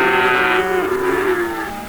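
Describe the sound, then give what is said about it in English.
A single long, loud cow moo holds steady with rich harmonics for nearly two seconds, sustained and low-pitched, with no voices over it. Cattle mooing in the livestock auction pens at Live Oak Livestock in Three Rivers, Texas, at its Monday sale. “We're going to walk the pens with Larry Marble and Riley Rhodes of Live Oak Livestock.”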